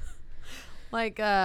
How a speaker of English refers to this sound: Why am I breathing so goddamn like heavy?